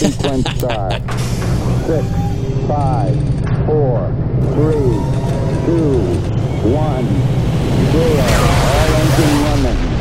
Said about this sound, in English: Cue the theme song.